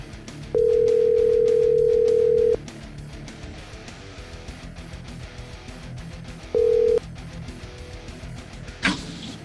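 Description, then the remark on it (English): A phone call being placed to someone in Kansas City: a steady electronic ringback tone sounds for about two seconds, pauses, then rings again briefly over a low background hum, ending with a small click. “And, man, yeah, let's just see what's going on there and see if we can get him on the phone here.”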